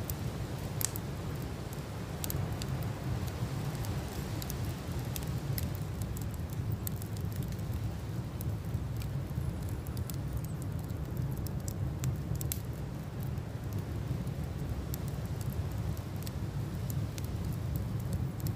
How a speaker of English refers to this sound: Listening to your fire crackle away.